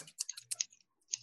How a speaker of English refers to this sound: All right, everyone, cut your scissors. Cut with your scissors. This is the weirdest bit we've ever had on this fucking podcast. Scissor solo.